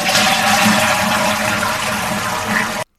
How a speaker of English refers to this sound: You cannot forget to flush a public toilet.